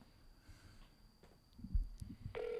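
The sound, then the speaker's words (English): An outgoing phone call at 11 p.m.: the line clicks and rustles quietly, then after a few soft thumps and handling noises a steady electronic ringback tone starts loud and clear near the end. “It's ringing.”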